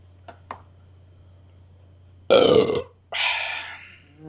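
Two loud, drawn-out burps, each a rough, gurgly belch lasting under a second, preceded by a couple of faint clicks and separated by a short pause.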